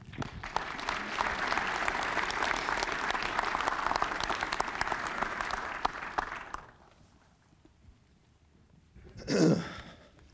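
An audience claps steadily for about six seconds as a man comes forward, a dense crackling wash of many hands, then fades to near silence before a brief breathy sound like a sniff or sigh.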